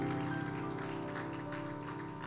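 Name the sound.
audience clapping hands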